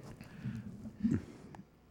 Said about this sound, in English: Yeah. I'm getting hiccups for some reason. Because you drank the beer.